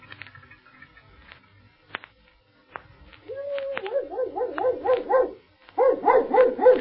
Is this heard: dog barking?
yes